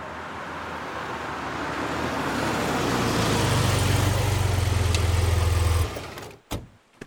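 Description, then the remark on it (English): A loud truck engine roars steadily as the vehicle drives by, its low rumble growing heavier midway before cutting off abruptly, followed by a couple of brief knocks. “Yeah, what did you think the truck was for?”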